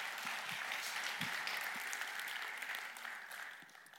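A steady wash of audience applause, dense crackling clapping that holds strong for several seconds before tapering off slightly toward the end, with no voices over it.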